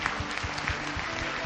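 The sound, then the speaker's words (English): A church audience applauds the people who have responded, many hands clapping in a dense, continuous patter at an even, moderate loudness with no voices standing out. “Why don't we give the church, let's give them a clap, just ones who have responded.”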